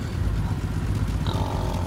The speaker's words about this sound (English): There's a sound of a distant motorcycle. This figure turns his head to the road and watches a Sasquatch on a pig bike squeal into the beach parking lot.